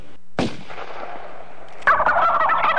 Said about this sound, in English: Oops, turkeys.